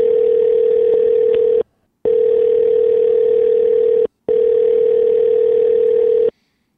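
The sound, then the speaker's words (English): A steady electronic telephone ringback tone, heard while calling a man's second phone number at 9 o'clock, repeats in three long bursts separated by brief silences, loud, with nobody picking up and no voices. “Not too proud to double dial people if I've got two phone numbers and I don't call him that fucking often.”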